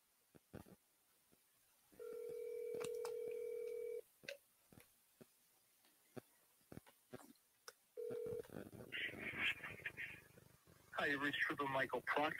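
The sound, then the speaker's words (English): A phone call being placed: scattered clicks, then a steady two-second ringing tone, a short second ring, and a tinny voice answering over the line. “Let's give this person a call, find out who the hell this is.”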